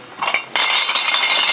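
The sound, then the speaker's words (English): Bottles and cans clink together: a few bright, sharp taps at first, then a loud, continuous jangling rattle as the containers are jostled. No one speaks. “For many homeless people, returning bottles and cans provides a source of income.”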